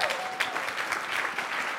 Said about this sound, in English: Go ahead and give the Lord a clap.